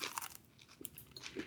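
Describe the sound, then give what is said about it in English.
Crunching as someone bites into a crisp homemade macaroon with a caramelized outside, a few brittle crackles and chewing sounds over about a second and a half, with no talking. “Oh, it has the perfect caramelization and crunch on the outside.”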